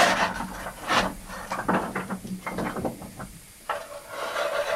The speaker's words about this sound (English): The firebox, as you can see, is quite narrow. So just literally angling the shovel to the left. Good. And some on the door.